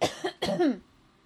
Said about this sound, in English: There's that allergy cough. It's the worst.